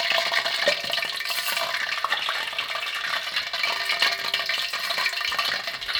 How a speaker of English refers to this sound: A wok with a lid, I think, is a good idea. Yeah. So, but you can hear the popping sound for sure. Okay, after 15 seconds, we're removing the basil leaves out of the fryer.